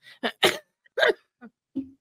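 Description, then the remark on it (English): A short fit of coughing: about five raspy, abrupt bursts at uneven intervals, the second and third strongest, then quieter, throatier coughs trailing off. No talking. “I was going to ask something, and the cough. Snuck in, so.”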